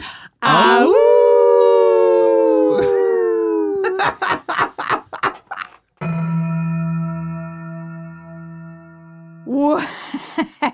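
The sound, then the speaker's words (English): Voices howl like wolves together in a long, loud, wavering cry, followed by choppy yelps, a sustained steady tone, and a final short burst of howling. “We would be honored if you would howl out.”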